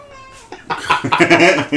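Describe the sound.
A female cat meows softly in a drawn-out tone, then louder, strained yowling follows, with voices mixed in toward the end.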